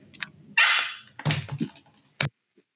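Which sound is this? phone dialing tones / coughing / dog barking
dog barking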